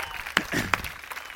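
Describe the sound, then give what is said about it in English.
A crowd applauds steadily, welcoming a man coming up to speak, a dense wash of clapping with a couple of sharper, louder claps standing out, at a moderate, even level with no talking. “He is not a fan of public speaking, so will you give him an amazing round of applause as you welcome.”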